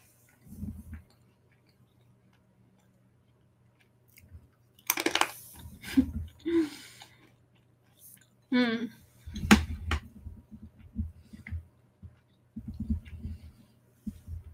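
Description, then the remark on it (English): Crunchy chewing of crisp air-fried sweet potato fries with coconut vinegar, a few sharp bursts of crunch in short clusters separated by quiet pauses, with some faint mouth sounds in between. “I like the ones that are like air fried the most to where they're like crunchy almost. Like, I don't know if you can hear that last one.”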